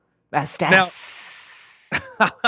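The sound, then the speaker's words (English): A voice makes a long, steady hissing sound, like a snake, lasting about a second between short bursts of voiced sounds, imitating a slithering hiss. “It's like the slithering hiss of the devil himself.”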